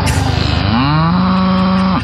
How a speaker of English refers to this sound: Cow sounds are inherently funny.